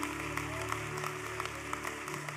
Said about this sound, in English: Come on, give the Lord a good hand clap of praise.